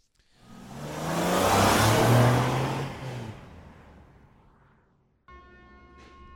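A race car engine roars past at the Brands Hatch racetrack, swelling to a loud growl and then fading, followed by a steady ringing, bell-like tone.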